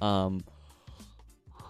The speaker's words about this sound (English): Excuse me, I am yawning. I'm tired. I don't know why.